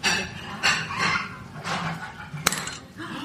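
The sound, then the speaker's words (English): A marble is pushed into a bottle of marble lemonade: bursts of hissing fizz rise and fade, broken by one sharp glassy click and faint clinks. “It's going fizzy now. Wow. There's a marble in my drink.”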